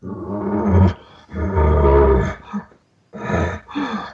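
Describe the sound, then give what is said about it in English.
A hunter imitates an elk call with three loud, raspy, growling roars in quick succession, separated by short pauses and no other talking. “So this is when we as hunters will use this sound. And that is how we take so many elk on over-the-counter hunts where everybody else is hunting.”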